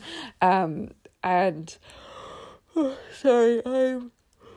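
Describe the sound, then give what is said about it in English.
A person yawns several times in a row, each yawn a drawn-out voiced groan with breathy exhales between, fairly loud. “yawning profusely.”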